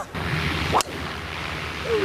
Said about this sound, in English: All right, so that really wasn't it. That was his tee shot.